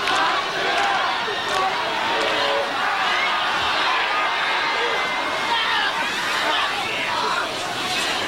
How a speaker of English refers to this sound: Crowd chanting Matsunaga.